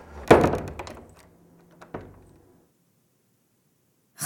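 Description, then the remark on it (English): Glass shatters in an office with a loud crash, scattering bright fragments as it fades, then a second smaller break follows about a second and a half later. No one speaks. “A few horror stories and some episodes of The X-Files came to mind as I swept up the glass in my office and debated what to do next.”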